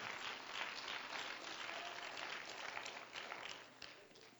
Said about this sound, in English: Hallelujah. Let's clap our hands and give praise to the Lord.